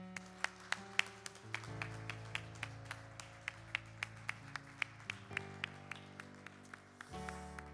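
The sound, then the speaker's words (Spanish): An audience claps loudly for the Lord in a steady, even rhythm, sharp beats roughly three per second, over sustained keyboard chords that shift a few times; no one speaks. “¿Por qué no le das un aplauso fuerte al Señor?”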